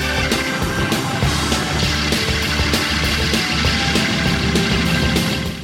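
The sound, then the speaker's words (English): Loud, dense crashing and rumbling as a musician rocks the organ back and forth, its reverb springs clanging together, with a steady stream of sharp metallic bangs over a booming low roar throughout. “This is where … literally rocks the organ back and forth, causing the reverb springs to clang together, causing a hell of a noise.”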